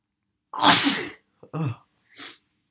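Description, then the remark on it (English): A sneezing fit of several sneezes in quick succession: one loud, explosive sneeze first, then a shorter one and a fainter third, with no talking. “Have you never had a sneezing fit?”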